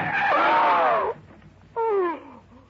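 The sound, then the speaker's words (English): A car's tires screech loudly as the driver slams on the brakes on a rutted desert track. A long squeal of about a second is followed by a shorter, sharper screech after a brief pause. “Then just as we cut in between some yucca plants and a windblown Joshua tree, I slammed on the brakes.”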